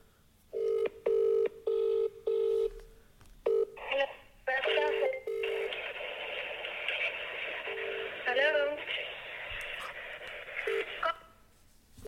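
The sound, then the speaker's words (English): A quick run of separate touch-tone beeps as a number is dialed on a phone for a prank call to a kebab shop, followed by a long, steady tinny ringing tone from the phone line that goes on with no one picking up. “How do you not answer your phone from being a potential customer?”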